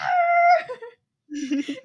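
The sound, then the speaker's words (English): A dog howls at a person holding a cross, giving a short, high, steady howl that trails off, then after a brief pause lets out a lower, wavering whining cry. “It's this dog, like, trying to howl at the person with the cross.”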